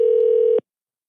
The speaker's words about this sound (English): It's weird because I hear ringing on your end, but my phone is not doing anything